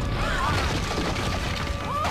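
A door being unlocked with a key and opened: metallic rattling and clunks of a lock mechanism over a steady noisy background, with two thin, squeaky creaks that rise and fall in pitch.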